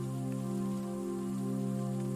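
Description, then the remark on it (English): Steady rain patters continuously at an even level, with a low, constant hum running underneath it and no voices. “Today, each one enters with a flustered expression, glad to be in the dry and out of the rain.”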